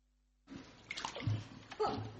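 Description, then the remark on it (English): After a moment of silence, water sloshes and splashes as a person steps down and wades into a heated baptismal pool, the swishing movements continuing in uneven surges with no talking. “Well, I'm going to go down into the water after I've taken my bit of kit out.”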